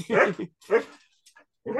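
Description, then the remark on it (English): A dog lets out a few loud barks mixed with whiny whimpering, three bursts separated by short pauses, with no one talking over them. “So really, dog?”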